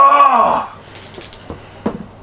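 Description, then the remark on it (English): A person lets out a short, loud scream while running forward, lasting about half a second, its pitch sliding downward, followed by near quiet with a few faint clicks and soft thumps. “I'm gonna make another loud scream as I'm running forward.”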